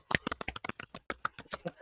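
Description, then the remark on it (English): Light, polite tennis-style clapping from a few people for someone who did well at trivia: quick, soft, scattered claps in an uneven patter, fairly quiet overall, with no voices over it. “Tennis clap.”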